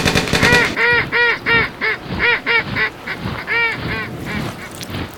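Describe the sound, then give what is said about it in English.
Several ducks quack loudly, their nasal calls overlapping in a rapid, uneven chatter that keeps going for a few seconds with no voices present. “Only at the enemy, not the ducks.”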